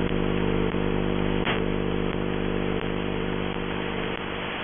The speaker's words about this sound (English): A lot of interference here, too. It's like scratching and warbling. There it is again.